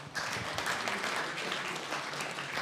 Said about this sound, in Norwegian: Skal vi klappe litt? Kom igjen!